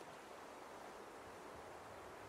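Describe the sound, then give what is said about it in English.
A steady, low-level wash of ocean surf rolls on without a break, faint, with no distinct individual crashes standing out and no voices. “As you sit next to her, she is unmoving as the sound of the waves are masking your sounds.”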